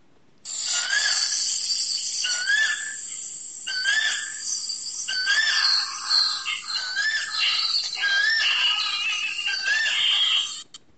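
A koel calls over and over, about seven rising whistled notes at a steady pace, set against a dense, continuous buzzing of crickets or other insects. Recorded on a quiet afternoon amid greenery in the village of Remuna, India. No one speaks.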